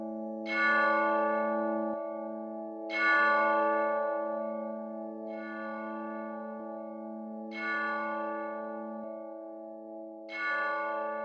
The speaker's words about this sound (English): suddenly the chimes of a neighboring church struck.